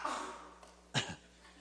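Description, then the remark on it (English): An audience member sneezes during a talk: a sudden, sharp sneeze bursts out once, followed by a quick softer puff, against a quiet, hissy background with no one talking. “Bless you.”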